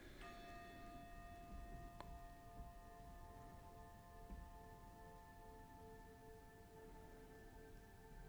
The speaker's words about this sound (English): You will hear the chime, the starting bell at the beginning, and the chime at the end to signal the end of the meditation exercise.